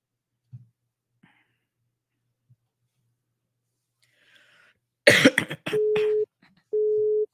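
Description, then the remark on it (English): A loud cough or rustling burst, then a telephone busy signal: two steady, evenly spaced low tone pulses, clear, with no one talking. “Oh, now it's busy.”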